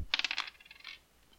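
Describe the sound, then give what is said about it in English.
Dice rolled by a referee clatter and rattle across a hard surface in a quick burst of bright clicks that gradually slow and fade out within a second, with no voices. “Referee rolls more dice.”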